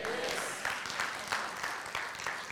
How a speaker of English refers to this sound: Do you believe, listen, before you clap, do you believe he could come back today?